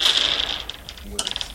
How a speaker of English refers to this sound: Both guys got their piles out. I want you guys to roll them together. Just merge your dice as they roll out of your hands. Some of the dice are the same, yes.